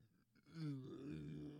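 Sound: burp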